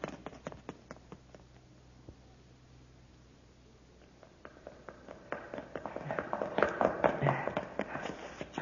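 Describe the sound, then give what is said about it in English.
Hurried footsteps of people running into a building pound up a staircase in a fast, uneven patter, starting fairly quiet and growing louder and busier as the runners come up the steps. “Quick, open the door. Up the stairs.”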